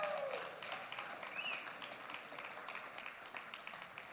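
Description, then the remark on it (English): An audience in a Pentecostal church claps together as the worship team comes up, a dense, steady wash of many hands applauding at a fairly even loudness, with a couple of brief high whistle-like tones near the start. “You can clap. It's all right. It's a Pentecostal church.”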